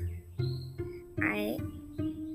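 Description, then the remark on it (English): A few short, close chirps with a buzzy edge come in quick bursts, one rising sharply in pitch, over a steady low hum. “I hear water running from far away, buzz and chirp from nearby.”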